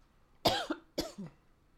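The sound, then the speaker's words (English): A woman coughs twice in quick succession, each cough a sharp burst followed by a shorter trailing rasp, fairly loud with no talking. “She coughs.”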